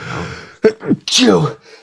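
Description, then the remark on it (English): A strange-sounding human sneeze, loud: two quick, sharp breath catches, then a breathy burst with a strained, downward-sliding voice. “You have the weirdest sneeze I've ever heard in my life.”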